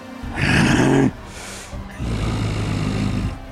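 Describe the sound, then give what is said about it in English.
A person voices a rough, throaty monster growl for the character Zahak in two bursts, a short loud one followed by a longer rumbling one, with no other talk. “Yeah, Zahak growls.”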